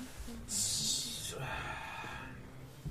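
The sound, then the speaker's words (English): A voice makes a loud, sharp hiss lasting under a second, imitating a snake, followed by a breathy, rasping exhale. Low background chatter continues underneath. “Snake noises. It's a snake.”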